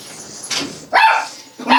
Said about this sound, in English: Here come the dogs.